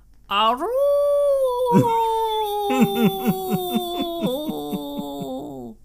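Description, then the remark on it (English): A man's voice imitates a wolf howl, one long sustained cry that swoops up, then breaks into a wavering, pulsing warble before trailing off. It is loud, with no other sounds. “Yeah, until the wolf howl, for sure.”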